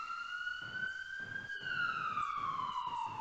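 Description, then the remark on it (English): An ambulance siren wails from some distance, one long tone slowly rising and then gliding back down, heard over a low, steady background rumble. “Again, ambulance sirens echo loud in the distance, and all the Sioux and Buffalo Bill stop for a moment and listen.”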